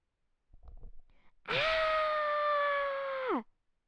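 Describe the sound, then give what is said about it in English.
A short breathy gasp, then a child's single loud, high-pitched scream of fright, held steadily for about two seconds before dropping off sharply. “Mason screamed, because in front of him was a short, fluffy creature.”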